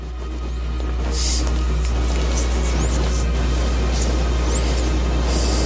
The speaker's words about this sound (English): That's an engine. Is that like a train? What the? It's the Batpod. It's a steam engine Batmobile.